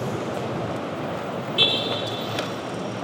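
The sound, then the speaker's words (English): A car horn honks once, a steady tonal blare that holds for over a second above a constant wash of road traffic noise. “Good car honk. I can use that for a transition later.”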